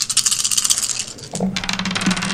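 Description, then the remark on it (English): Several dice, including a purple die, clatter and tumble across a hard tabletop in a quick, continuous rattle lasting a couple of seconds, fairly loud, with no voices. “Give me a purple die to that. And roll the...”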